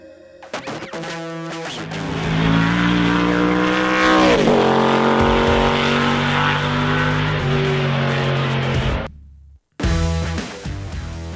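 A racing car engine, recorded by Jimmy Ford of JimmyFordRacing.com, roars loudly, revving and shifting with sharp tire squeals over the top, then cuts out abruptly before briefly roaring back to life.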